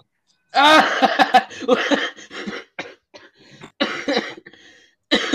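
A person coughs several times in close, harsh bursts, with a few shorter hacking coughs spaced out after, loud and near with no talking.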